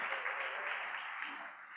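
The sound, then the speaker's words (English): A church audience applauds in a steady, dense wash of clapping that holds evenly throughout, moderately soft, with no voices standing out. “You can applaud yourselves for being an amazing church family.”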